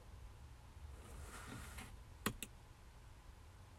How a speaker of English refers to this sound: Alright. Just clicking on stuff again.